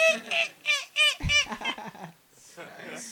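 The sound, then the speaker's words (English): A person voices a loud, nasal seagull impression, a series of squawking cries with rising and falling pitch, followed by a short stretch of quieter laughter or chatter. “We need your seagull.”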